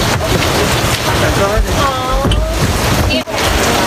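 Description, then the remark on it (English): A steady, dense hiss of rain falls throughout, with a brief muffled voice rising over it partway through. “Oh, that rain felt good up there.”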